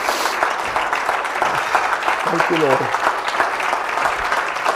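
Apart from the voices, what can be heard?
audience clapping hands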